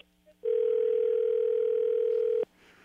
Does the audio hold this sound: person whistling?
no